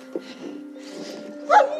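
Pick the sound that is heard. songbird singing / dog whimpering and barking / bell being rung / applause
dog whimpering and barking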